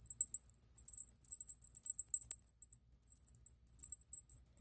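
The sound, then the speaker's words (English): Plain silver-gray anklet bells jingle in quick, irregular bursts, a bright, high, tinny shimmer that keeps going for several seconds with short pauses. No one speaks. “And the bells making the sound.”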